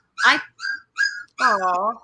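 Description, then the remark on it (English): A puppy whimpers in four short, high, whiny cries, the last one drawn out and wavering, fairly loud with brief pauses between. “It's one of the puppies.”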